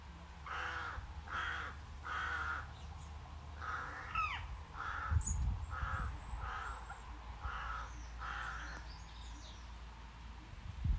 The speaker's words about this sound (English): I think they've been chattering for ages. I think that is a magpie and a crow talking to each other.